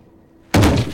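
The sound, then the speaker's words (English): Near silence gives way to a sudden, loud car crash, a heavy impact followed by harsh crunching of metal from the front of the car that continues to the end, with no voices. “A crash, followed by a crunching sound from the front of the vehicle.”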